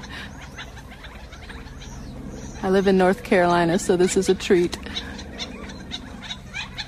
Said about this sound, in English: listening to Gamble's Quail. In Tucson, Arizona, sun has just set, and I'm so happy to have found a chatty group of quail.